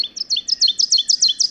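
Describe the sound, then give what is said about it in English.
An ovenbird, a forest-floor bird, sings its loud, ringing song: a rapid series of about nine repeated two-note phrases rising in intensity, bright, with no voices present. “Yeah, that's the oven bird.”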